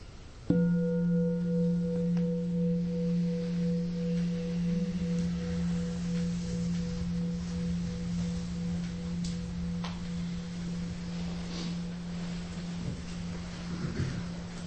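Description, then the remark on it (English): A meditation bell is struck once to seal a shared intention, and its low, mellow tone rings on with a gentle wavering pulse, fading only slightly over about fourteen seconds, with no voices. “So we'll just seal it with a bell.”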